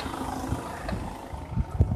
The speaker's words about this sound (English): Just passing a car there. I'm actually on a road, but it's a very quiet road, so I think I'm right to do a bit of chatting.